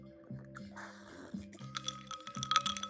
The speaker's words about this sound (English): I'm going to have a little sip here.